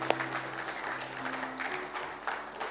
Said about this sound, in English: Let's pause now to praise God for these examples to us, this legacy of faith that is in our midst. You can clap. You can go, thank you, God, for what we have.